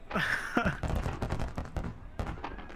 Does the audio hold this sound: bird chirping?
no